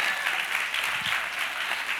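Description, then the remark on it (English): Steady, dense clapping from a crowd applauding the speaker fills the whole stretch, a continuous crackling wash of many hands at an even volume with no break and no voices. “So while y'all clapping for me, you need an applause too.”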